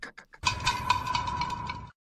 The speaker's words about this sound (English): Everybody knows the shade sound. That snake rattle. Yes. Yeah, it's got to be that one.